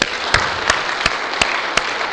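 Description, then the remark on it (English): A crowd breaks into a steady round of applause, dense crackling claps throughout, punctuated by louder, evenly spaced sharp claps about three times a second. No one speaks. “And so we need to give her one great round of applause.”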